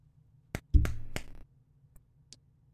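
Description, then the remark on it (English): Three sharp, crisp slaps land in quick uneven succession, the middle one backed by a dull low thud, followed by a couple of faint, light taps. No one speaks. “I did end up going with the slap.”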